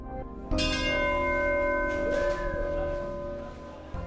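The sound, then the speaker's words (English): A single deep memorial bell strikes once with a sharp onset, then rings out in a long, shimmering decay of layered tones, loud, with no voices present. It is tolled to mark the passing of a fisherman lost at sea with the crew of the fishing vessel Destination in the Bering Sea. “When a fisherman dies at sea, it's tradition to ring a bell to mark his passing, a nod to the fact that sailors ring the ship's bell at the end of their watch.”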